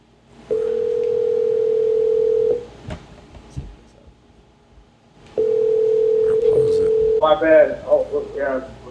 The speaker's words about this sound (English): Calling him right now. See if he picks up.